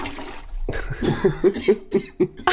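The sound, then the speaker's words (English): A harsh coughing fit: a rapid string of about eight raspy, chesty coughs in quick succession, fairly loud, with a strained, choking quality and no talking. “Water. I need water. I'm dying. I just literally was like in my throat.”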